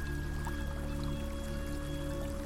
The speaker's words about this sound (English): And you can hear the river now.